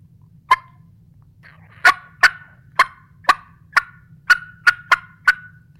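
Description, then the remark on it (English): About ten sharp, excited wild turkey clucks made on a call. A lone cluck is followed by a quickening, slightly irregular run, each note crisp over a faint low hum. “But yeah, if it's more of that more excited cluck, like what you're talking about”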